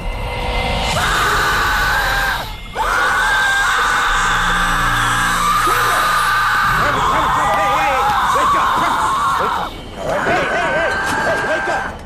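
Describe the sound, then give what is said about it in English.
A loud, sustained, shrill scream from a boy in a horror film as he contorts his way upside down out of a box in a kitchen at night, rising and wavering with brief breaks, layered over a dense, chaotic roar of noise and low rumbling, sounding harsh and unnatural. “And then out of the box, his son contorts his way out upside down and starts screaming this ungodly like scream.”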